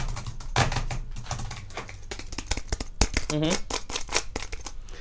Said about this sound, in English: I'm going to go to IMDb. Okay. Just look up what else Vincent's been in. I hear you typing. Let me just look it up real quick.